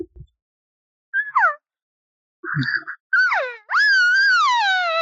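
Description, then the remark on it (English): A breeding-type sequence of imitated cow elk calls, made to call in a bull elk: two short, high, downward-sliding mews, then a longer, louder, raspy wavering call that holds and slowly falls in pitch, with no talking. “And the way I do that is I start out with two cow sounds and then an abrasive third one.”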